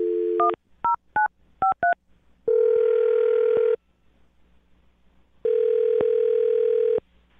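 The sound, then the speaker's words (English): A brief dial tone, then a quick run of touch-tone keypad beeps as a phone number is dialed, followed by two long, steady ringback tones separated by a pause. Clear, with no voices. “So let's find out right now by dialing his phone number and getting him on the phone, okay?”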